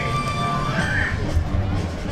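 A large crowd's steady roar and babble at a theme park where the Green Army Men are performing, holding at an even, fairly loud level with a few faint sustained tones threaded through the noise.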